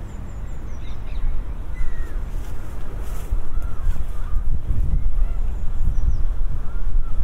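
Scattered bird calls, including pigeons, come and go as short high chirps and a few honking cries on a park common by the water, over a steady outdoor rumble of wind and traffic.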